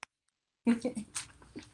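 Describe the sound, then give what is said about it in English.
A voice imitates a monster's growl: a brief tick, then after a pause a run of short, voiced, rasping bursts that sound more cute than fierce, fading out over about a second. “And then he growls.”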